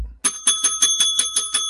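A small bright bell rings rapidly about eight times in a quick, steady rattle, loud, with a metallic ringing tone like a bicycle bell and no voices, rung to mark a correct answer in a wrestling trivia game.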